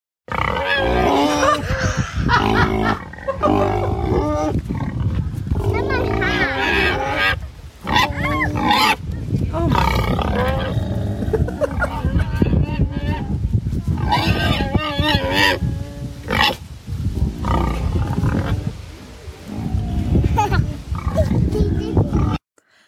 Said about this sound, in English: That is a good sound. That's good. Where did you find the pig? It was at one of those sort of free farms that you can go to, rescue farms on the North Norfolk coast. And it's a pig, obviously, if you hadn't worked that out.